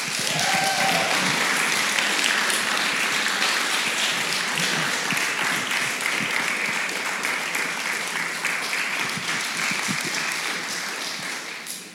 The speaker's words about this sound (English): Please clap for